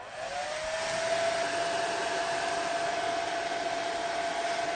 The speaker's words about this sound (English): turn on the hairdryer and keep it in one place on the polythene bag. To turn it on.